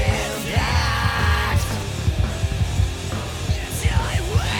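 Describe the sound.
A man lets out long, strained screams over loud, driving music with a heavy pounding beat, his voice rising and bending in pitch as it cuts through.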